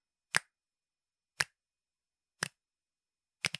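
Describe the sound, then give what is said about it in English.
Four sharp finger snaps land at a steady pace about a second apart, the last two sounding slightly doubled, with silence between them and no talking. The snapping is the first ingredient of a 'musical salad' rhythm activity. “The first ingredient will be snapping your fingers.”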